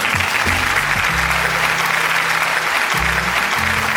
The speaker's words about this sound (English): Bill Russell again, along with 10 others, making it the first largest Hall of Fame class ever, which is amazing. You know, they deserve a round of applause. Go ahead.